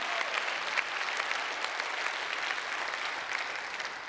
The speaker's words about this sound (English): That's enough preaching for a hand clap or two out of some of you.